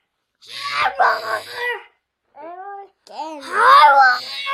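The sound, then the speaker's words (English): Several children let out loud, drawn-out roars imitating tigers, in two bursts separated by a short pause, with the second group of roars rising higher and more shrill. “Let's say hi again like a raw tiger again.”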